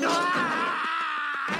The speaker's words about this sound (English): I'd like to see it without the scream.